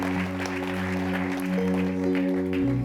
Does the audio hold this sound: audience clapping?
yes